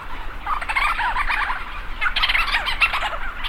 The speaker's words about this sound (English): Thousands of leech storm petrels circle overhead, swooping and calling into the dark. Lang Elliott captured these sounds for his CD he calls ….